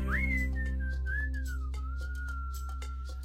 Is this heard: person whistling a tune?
yes